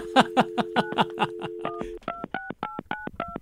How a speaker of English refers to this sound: I love dialing sounds.